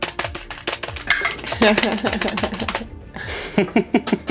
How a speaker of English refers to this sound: And of course, now we know what the sound of heavy metal boots sound like. It's...